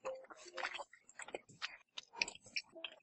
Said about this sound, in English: Jeez, my chewing is really loud. I blame Starburst.